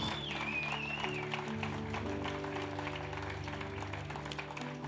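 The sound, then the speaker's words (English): An audience claps steadily in a hand clap of praise to the Lord, a dense patter of many hands, over sustained organ or keyboard chords that hold underneath throughout. A brief high whistle-like tone rises early on. “Let's give the Lord a hand clap of praise, would you?”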